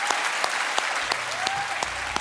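An audience at the 2018 Auckland Writers Festival claps steadily after a talk, a dense patter of many hands with a few sharper individual claps standing out, sustained throughout at an even, fairly loud level.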